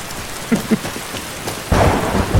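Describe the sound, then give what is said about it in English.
Steady rain hisses throughout a thunderstorm on a mountain, with a couple of soft thumps early on, then a deep roll of thunder swells up near the end and rumbles on. No one speaks. “Ooh, do you think there's a danger of getting hit by lightning up on this mountain?”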